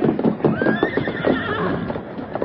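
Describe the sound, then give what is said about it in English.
A horse whinnies in a rising, wavering call while hooves clop steadily underneath, loud, with no voices present. “Get to your horse and start down the trail.”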